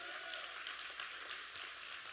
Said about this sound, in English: Come on, let's just give the Lord a hand clap for our facility.